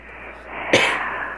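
A single heavy, breathy rush of air bursts in midway and trails off, heard on a phone message received last night over a muffled, tinny phone line with steady background hiss and no talking.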